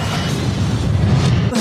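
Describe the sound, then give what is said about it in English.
A loud explosion sound effect: one dense, roaring blast with heavy low rumble that sustains for over a second, then cuts off abruptly. No one speaks over it. “Boom, there it is. Explosion.”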